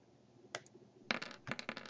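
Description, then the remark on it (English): A couple of sharp clicks, then a dense clatter of many small hard dice tumbling and knocking across a table as they are rolled for an attack, fairly loud, with no talking. “Jeez, that's a lot of dice.”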